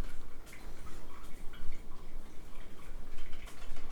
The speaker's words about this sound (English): And I think it's a little cooler today. But, you know, that rain just makes things so much more cooler. Colder.